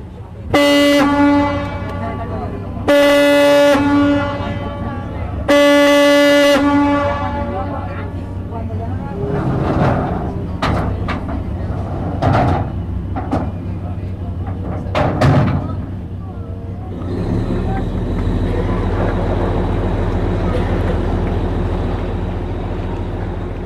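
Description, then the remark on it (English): A boat crossing the bay into Cádiz sounds three long, loud blasts of its horn in quick succession, followed by busy harbour ambience with faint voices and a steady low engine rumble as the vessel moves along. “So we're going to go on the boat across the bay, and we're going to go into Cádiz by sea, the way people would have always entered it.”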